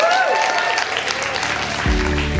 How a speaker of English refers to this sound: Hey, you folks in the room, let's give these people a cheer, shall we?